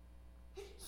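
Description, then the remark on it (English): A single quick sneeze bursts out about halfway through, a short voiced catch followed by a breathy, hissing release, fairly faint and set against a steady low background hum. “Bless you. One more time.”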